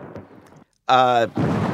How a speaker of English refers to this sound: I think we're on Earth and not on Titan, in which case that is definitely lightning